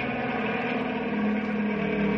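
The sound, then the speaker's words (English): A helicopter with a spotlight drones steadily as it comes in again, a dense mechanical roar with a low humming tone running through it, holding nearly constant loudness and growing only slightly stronger toward the end, with no voices. “Hey, here comes the helicopter again.”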